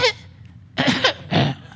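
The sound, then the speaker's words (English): A short burst followed by two louder, harsh coughs in quick succession, with brief pauses between them and no talking. “I have a cough.”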